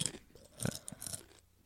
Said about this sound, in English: I can just hear you munching like crazy on these things.